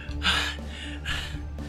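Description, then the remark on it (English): Heavy breathing with two long, noisy breaths about a second apart, each a rough airy rush that swells and fades, with no talking. “I hear you breathing heavy over there.”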